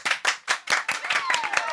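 A short round of applause: steady, evenly spaced claps that quickly thicken into a denser, overlapping burst of clapping, with a faint whistle-like tone gliding downward near the end.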